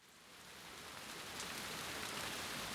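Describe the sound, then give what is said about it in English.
Steady, heavy rain pattering and dripping from a canopy at an allotment site in Southall in spring, a dense continuous hiss of drops that swells slightly louder after the first second, with no voices. “And as is often the case in the spring, it's pouring with rain and we're standing under a dripping canopy”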